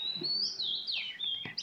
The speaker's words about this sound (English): can you put those birds in the toilet